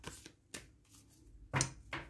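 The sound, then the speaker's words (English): A deck of ancestor and angelic cards being shuffled one more time before a three-card reading: a handful of crisp, papery bursts and snaps at uneven intervals, with quiet gaps between them and no one talking. “Then I'm going to just shuffle one more time, and then I'm going to get started.”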